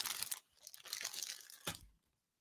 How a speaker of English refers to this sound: I'm opening up some more bags.